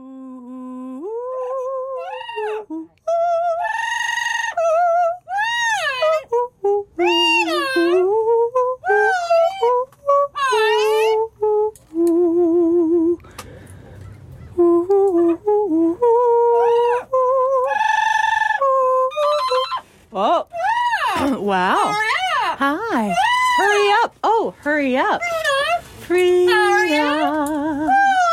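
A parrot named Frida mimics a woman's laughter, running through a long string of squawky, warbling bursts that swoop up and down in pitch, loud and almost unbroken, with no real voices present.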